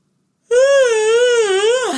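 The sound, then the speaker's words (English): A long, voiced yawn: a steady moaning tone that wavers slightly in pitch for about a second and a half, then slides downward as it trails off. No other sounds around it. “That yawn felt really good.”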